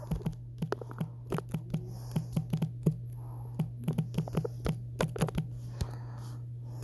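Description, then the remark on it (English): Rapid, irregular keystrokes clatter on a computer keyboard in bursts as someone types a reply, fairly quiet, over a steady low electrical hum with no one speaking. “If you heard my typing, I do apologize.”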